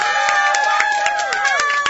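Steady, rhythmic clapping from an audience, loud and close, with sharp claps landing at an even pace over a sustained tonal hum of music or crowd voices.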